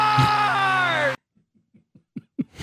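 A man lets out a loud, strained scream lasting about a second before cutting off abruptly, followed by a series of soft, short huffing sounds that grow slightly louder.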